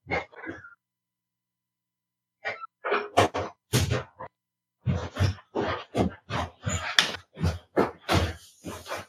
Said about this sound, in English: And hold on. I gotta go close my door.